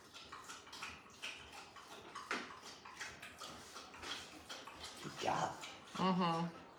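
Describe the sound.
Dogs lap water in quick, irregular wet splashes, with a short voiced sound rising near the end.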